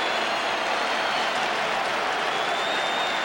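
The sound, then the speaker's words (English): A large cricket crowd boos after an underarm delivery ends a 50-over match against New Zealand, a steady, dense roar of many voices holding at an even loudness throughout the few seconds with no single voice or speech standing out. “Disappointed Brian McKechnie, the crowd boo.”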